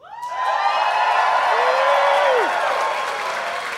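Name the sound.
audience cheering and applause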